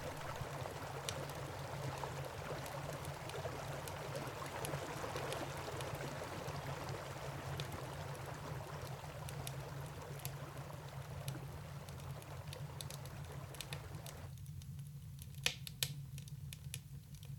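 Water sloshes and splashes steadily as a man swims across a frigid river, with scattered sharper splashes over a low, constant rumble. The churning thins out near the end, leaving a few isolated splashes.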